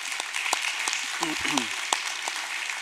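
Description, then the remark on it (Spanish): A crowd applauds steadily for people who have just been baptized, dense clapping filling the whole stretch at a fairly loud level, with a brief voice calling out partway through. “Un aplauso para ellos y todos los bautizados.”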